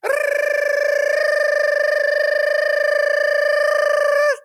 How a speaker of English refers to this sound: It's the gibberish siren.